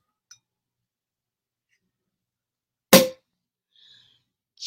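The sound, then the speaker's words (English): A single sharp pop of a cork bursting from a prosecco bottle being opened, loud, followed by a faint hiss of fizz in otherwise near silence. “My first cheer of joy, the sound that the cork make what makes when it comes out of a bottle of prosecco or champagne.”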